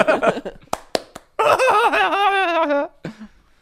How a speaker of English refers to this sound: It'll just be like, why do they laugh every time after they clap?